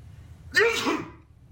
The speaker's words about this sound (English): I sneezed. Oh, I'm not allowed to sneeze.